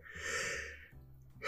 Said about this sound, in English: I am really sorry. Don't worry. Impossible for me to not yawn.